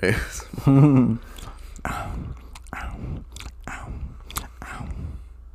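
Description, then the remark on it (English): Close-miked chewing of sour Skittles candy: wet, crunchy mouth sounds repeating in irregular bursts right up against the microphone, with a brief voiced sound near the start. “Yeah, you're really right up in that microphone with your chewing.”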